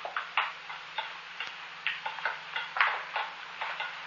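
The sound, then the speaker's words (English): A blind man taps his way along a floor to a desk: a steady series of dull taps, roughly two or three per second, each a short hollow knock at moderate loudness, with a faint low hum underneath and no voices. “He tapped his way along the floor to the desk, stopped over the drawer, then stayed there in a crouch like a guy in a trench.”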